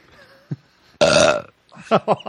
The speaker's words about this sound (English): I had my headphones turned way up, and that burp was very loud. Now, very loud here, too.